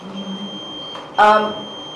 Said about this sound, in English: Is somebody putting the alarm on next door?